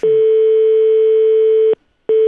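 A telephone ringback tone while calling a number in Climax, North Carolina: a steady, buzzy mid-pitched electronic drone lasting nearly two seconds, then a short silence before the next ring starts. Loud and alone, with no voices.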